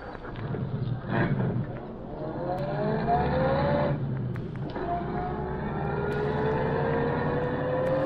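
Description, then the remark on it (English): Britt Reed's car engine rumbles, then revs and pulls out from the curb, its pitch rising steadily as it accelerates down the street; no voices are heard. “Car pull out from curb down the street.”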